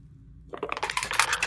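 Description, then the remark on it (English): Dice rolled for a knowledge religion check clatter across a hard table in a quick burst of small clicks and rattles, starting suddenly after a short silence and building in loudness, with no talking. “Okay, so why are my dice higher tonight?”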